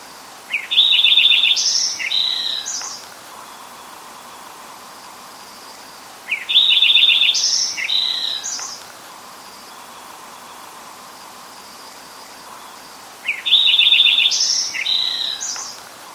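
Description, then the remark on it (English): A Lincoln's sparrow sings its bubbly, rapid song three times, each phrase about two seconds long with pauses between, clear over a soft background hiss. “So that is the Lincoln sparrow, and keep an eye out for those, or an ear out for those, I guess I should say.”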